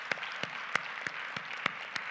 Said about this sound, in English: Can we give all those who made this possible today a hand clap of appreciation?